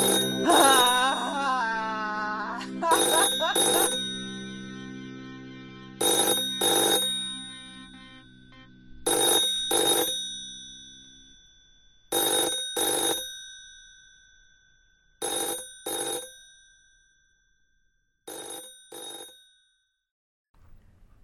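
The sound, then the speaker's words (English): A telephone bell rings immediately after the phone has been hung up, in repeated double bursts, a pair of shrill rings roughly every three seconds, after a brief warbling tone at the start. The ringing gradually grows fainter, with no voices. “I hang up the phone. It immediately begins to ring.”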